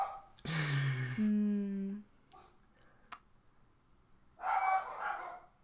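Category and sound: animal, dogs barking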